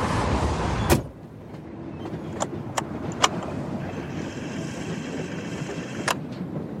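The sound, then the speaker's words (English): Muffled ambience inside a car parked under the S-Bahn railway bridge on Schönhauser Allee: a steady low rumble of traffic or a passing train outside, a solid door thump near the start, scattered small clicks, and a faint high whine later. “towards the end of her operation, they had to meet very quickly in a car under the S-Bahn bridge on Schönhauser Allee.”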